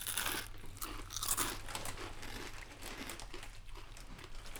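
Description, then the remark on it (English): Steady crunching of a crispy cheese-flavored fries snack, with dense, crackly bursts repeating irregularly over several seconds alongside faint crinkling; no voices, just continuous chewing. “Oh, like the cap hot fries? Yes. Cheese fries? Those are great. Okay, yeah. Cool. Let's give them a shot.”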